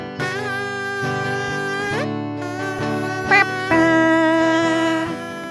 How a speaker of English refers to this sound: Let the kazoo go.